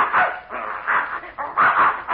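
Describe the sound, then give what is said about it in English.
A mad dog, Adolf, barks and yelps several times in quick, uneven bursts while a bear chases him, fairly loud, with a thin, muffled quality and no talking. “Well, I'll be darned, there's that mad dog Adolf.”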